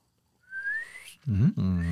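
After taking a sip of a drink, a person gives one short, rising whistle that slides upward in pitch, clear, then a voice starts talking right after it.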